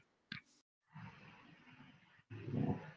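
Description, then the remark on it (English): A dog, set off by other dogs barking at the back, lets out one sharp bark, then two longer, rough, growling bursts that grow louder toward the end, with no talking. “I'm just going to leave you with everyone on my dog barks. Sorry.”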